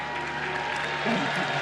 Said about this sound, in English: Thank you. I knew it. Every time I say Puerto Rico, I have to pause because I know they're going to clap.